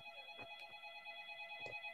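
A phone rings faintly in the background, its steady electronic tones holding through the whole moment, with a couple of soft bumps or knocks passing underneath.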